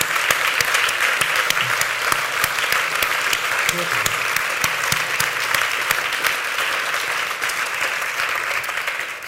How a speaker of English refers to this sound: I think a round of applause. Oh, thank you.